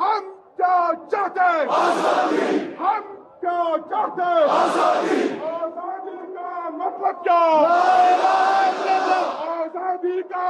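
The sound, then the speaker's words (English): A large crowd of protesters in the streets of Kashmir, protesting after Article 370 was revoked and saying they want Kashmir free and independent, chants and shouts in unison, with loud swelling surges of many voices rising and falling in a repeating rhythm over roughly ten seconds. “First, large crowds of people living in Kashmir took to the streets to protest, saying they want Kashmir to be free and independent.”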